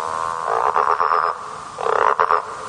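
A toad croaks in two rattling, pulsing bursts separated by a short pause, fairly loud, with no talking.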